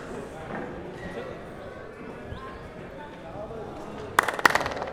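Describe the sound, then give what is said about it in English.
Near the end, a quick cluster of sharp hand claps rings out and echoes briefly through a stone fort, following several seconds of low crowd murmur and voices. “This is echo.”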